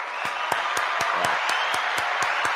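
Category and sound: sound effect, applause sound effect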